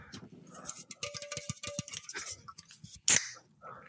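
A plastic water bottle crackles and crinkles in a quick run of sharp clicks as it is handled and shaken, ending in a brief, loud hiss as the cap comes off.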